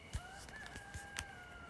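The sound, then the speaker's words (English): A rooster, one of several wandering wild around a campground, crows in one long, drawn-out call at 5:30 in the morning while it is still mostly dark, with a few soft knocks and thumps in the background and no one talking. “They have roosters just wandering wild around the campground.”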